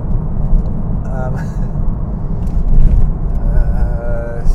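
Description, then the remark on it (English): A voice imitates the engine of a small Toyota car revving, a rough low rumbling drone with a couple of rising, buzzing pitch swells, fairly loud throughout. “Got my revs up here.”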